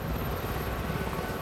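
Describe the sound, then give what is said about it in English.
A circling helicopter winches a person up during a rescue. Its kerosene turbine engine roars steadily, with the low, rapid thumping of spinning rotor blades pulsing underneath a dense, continuous drone. “the rotating propellers, the roar of the engine.”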